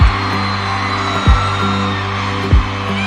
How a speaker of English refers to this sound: And on top of that, I can hear that it really seems like every single person in this crowd has memorized every single word to the songs and is not just singing them, but like screaming them.